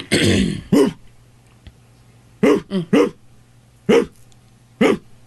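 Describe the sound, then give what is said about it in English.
A person imitates a big dog barking far away during an animal impersonation game: a rough opening burst, then a handful of short, deep woofs in an uneven rhythm, with quiet gaps between them. “As far as the ones we've heard big so dog far away.”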